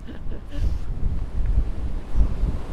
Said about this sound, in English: This is very, very windy. The wind's getting up. Let's walk on a bit and get warmer.